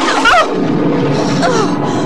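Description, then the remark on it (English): A loud thunderclap rumbles and roars steadily for about two seconds over a dense hiss of falling rain, with a couple of brief warbling squeaks riding on top. “The rain's starting, listen.”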